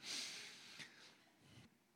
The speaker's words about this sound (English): A quick one. Quick sniff and it's gone.